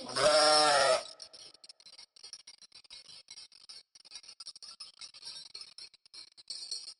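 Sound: sheep bleating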